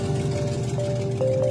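A Prius engine, started in Chicago, runs rough and loud, with a steady low rumble and a harsh, diesel-like clatter, plus a thin tonal whine that wavers slightly over the short clip.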